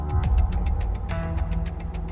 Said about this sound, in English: We're in the northeast parking lot of the mall outside the Penny's building